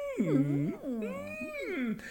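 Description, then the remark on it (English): A voice imitates a creature's whimpering whine: a couple of drawn-out, wavering, nasal cries that slide up and down in pitch, fairly loud, with no words spoken. “It's kind of whimpering, but they refer to it as whimpering in the script.”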